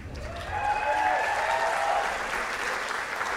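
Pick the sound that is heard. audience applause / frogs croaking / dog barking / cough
audience applause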